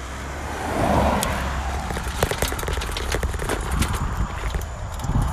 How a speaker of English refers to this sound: I don't really have a good place to cross the street from where I am right now. Let's see. I'm in a very rocky area. Hang on, let for this car to pass by, and then maybe I'll be in a better situation.